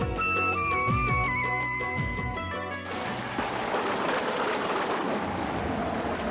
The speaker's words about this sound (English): Oh God, what a rain! Yes. One drop is one pot full of water.